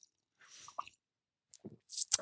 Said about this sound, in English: You know, just one more sip of coffee and we'll kick this off.